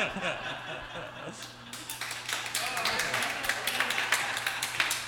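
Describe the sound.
After a brief murmur of voices and chuckles, an audience breaks into steady applause, many hands clapping in a dense, irregular patter that holds at a moderate level, mixed with scattered laughter.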